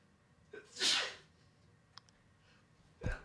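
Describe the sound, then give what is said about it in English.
A single loud sneeze bursts out with a sharp breathy hiss, preceded by a quick inhale, followed by quiet room noise and a faint click. “Bless you.”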